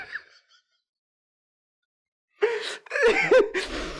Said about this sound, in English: Wait. It's not even loud. Can you hear the breathing? You've been breathing.